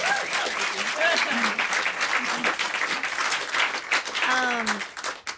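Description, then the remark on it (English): An audience applauds steadily for several seconds for the singer's guitarist at a live music performance, a dense wash of many hands clapping, while a voice talks over the applause and cheers rise briefly near the end. “And also another round of applause for my beautiful, beautiful guitarist”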